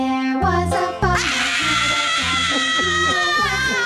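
A shrill, sustained screaming voice wails over a played song, riding above a steady, rhythmic pulse of low chords that repeat throughout the few seconds.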